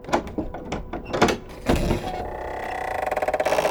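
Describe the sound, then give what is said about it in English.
The door to a library opens with a few sharp mechanical clunks, then a motorized whirring hum builds into a steady rapid pulsing as it slides along, clear, with no talking. “This is the door to the library. Oh, good. Open it.”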